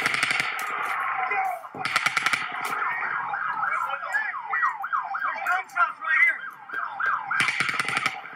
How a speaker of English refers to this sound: Then Paddock fires a fifth burst. It's around 22 bullets in three short volleys.